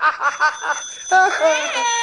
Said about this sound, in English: Yes, dear. Telephone's ringing. Yeah, I hear it. Well, answer it.